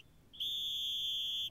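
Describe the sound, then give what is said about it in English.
A single sustained high-pitched whistle tone sounds alone, loud, holding steady for over a second before cutting off cleanly. “130 episodes in, and you thought it was two different whistles.”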